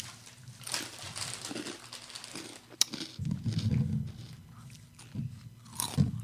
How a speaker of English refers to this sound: Yeah, I'm hearing a lot of crunching. Yeah. What's going on there? We're eating Cheetos.